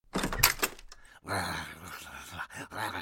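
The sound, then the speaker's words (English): The door of a small programme hut is unlatched and pulled open with a couple of sharp clunks and a brief rattle, followed by a long, low, strained groan from someone. “Bill went over and opened the door.”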